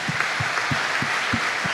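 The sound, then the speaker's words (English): A crowd applauds in a steady, dense wash of clapping, with a regular low thump pulsing about three times a second underneath. No one speaks. “Let's give them a God bless you hand.”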